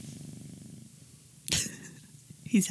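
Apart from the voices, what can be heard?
domestic cat purring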